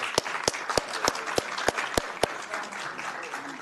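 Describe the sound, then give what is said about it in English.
Audience applause for Team Rubicon and the Office of Emergency Services team at a council meeting in Sacramento, with a steady crackle of many hands clapping, a few sharp, regular claps standing out over the first two seconds before the clapping thins and fades. “Please give a round of applause to Team Rubicon and our team here at Office of Emergency Services.”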